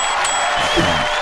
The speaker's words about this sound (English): Oh my god, the crowd goes wild.